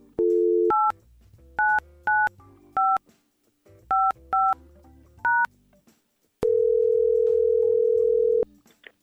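A short dial tone gives way to seven clear touch-tone keypad beeps in an uneven rhythm, followed by a long, steady ringing tone on the line, as Y100 radio show hosts place a phone call. No one speaks.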